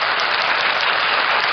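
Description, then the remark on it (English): A burst of crowd applause sound effect, dense and steady, with many hands clapping at once in a continuous hiss-like wash of claps, fairly loud, with no voices. “So round of applause for that.”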